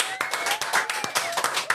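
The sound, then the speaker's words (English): A small group of a guest's friends claps in a studio, quick uneven hand claps overlapping for a couple of seconds, moderately loud and lively. “I don't ever get applause.”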